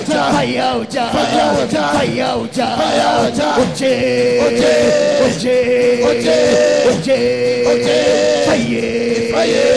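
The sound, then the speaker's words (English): A shrill oja, a wooden flute, plays sustained, wavering high notes over a loud, busy backdrop of crowd voices and shouts, the piercing tone carrying steadily throughout. “Fire Oja, play, play, aha.”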